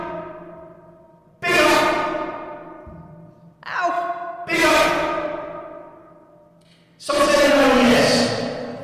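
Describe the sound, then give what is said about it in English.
A voice makes a few loud, wordless sighing bursts, each drenched in heavy echo that rings on and fades slowly before the next one starts. “Is the echo on now?”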